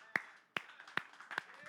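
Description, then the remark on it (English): An audience stands and claps in unison in praise of God, four sharp claps at a steady beat about every 0.4 seconds, each one crisp and loud, with a faint murmur of voices in between. “Would you stand up and give God a hand clap of praise with me?”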